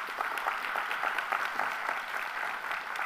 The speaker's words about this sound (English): If you believe that, if you're getting that, come on, give the Lord a mighty hand clap.